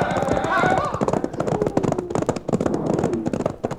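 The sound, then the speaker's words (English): Several horses gallop hard, their hooves pounding in a fast, continuous drumming, with a brief whinny-like cry and voices blurred underneath. “Turn those horses, boy, and let's get out of here!”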